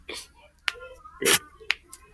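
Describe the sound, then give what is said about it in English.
Knuckles cracking: a handful of sharp, dry pops at irregular intervals, one louder crack in the middle, with faint murmuring in the background. “Let me just crack my knuckles.”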